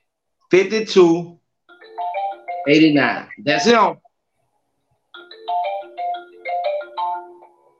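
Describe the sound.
A phone plays a melodic electronic ringtone in two stretches of stepped, beeping tones, with brief loud voice sounds in between the first round of ringing.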